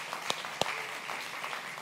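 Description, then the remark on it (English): A crowd claps steadily in dense, continuous applause for interpreters, with a couple of sharper, louder claps standing out near the start. No one speaks over it. “Give it up one more time for them if you would.”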